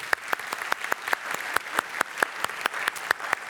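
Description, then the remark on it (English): A small audience claps together, a steady run of sharp, bright hand claps at a fairly quick pace, moderately loud, with no voices. “Give Mark a little clap here.”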